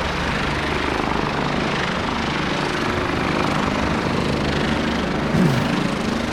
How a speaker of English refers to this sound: This is like a sound art. It really is. Peace now. Let's just roll on some helicopter. The helicopter and traffic.